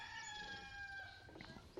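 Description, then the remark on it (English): A rooster crows once in a long, drawn-out call that slowly falls in pitch, with no one talking over it. “Is that a rooster?”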